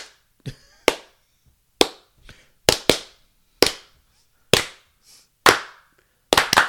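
Loud, sharp hand claps, the distinct clap pattern that audiences clap along to in a song, about ten in a syncopated pattern with a few quick doubled claps, each ringing briefly before the next. Softer taps sit between them, and no one speaks.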